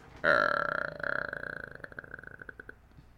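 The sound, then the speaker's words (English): A creaking door groans open in one long, high, strained tone that breaks into slower, stuttering clicks as it trails off, the entrance sound of Aleister Black on Monday Night Raw. No one speaks. “The creaking door.”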